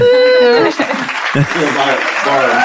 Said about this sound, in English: So we're about to have our 30th anniversary. Congratulations. We need applause on that one, yes.